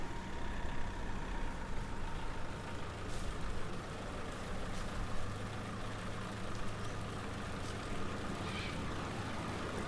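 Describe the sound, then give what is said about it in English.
Heavy military truck engines rumble steadily and loudly throughout, a dense low growl like a convoy of vehicles grinding up the road surfaces in Dorset, with no pauses and no voices. “White dust covered the hedgerows as convoys ground up road surfaces”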